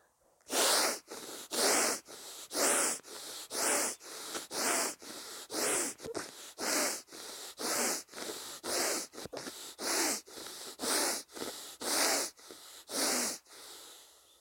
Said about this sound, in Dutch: Dus dat is die ademhaling. Dat is echt heel erg inademen en weer uitademen. Met krachtige power, zeg maar. Power. En ik merkte ook dat mijn neus koud werd van binnen. En dat ongeveer 30 keer achter elkaar.